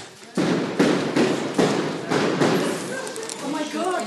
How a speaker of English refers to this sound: They're shooting in the house. The police fire tear gas canisters at such close range, they rip holes into the walls of the house.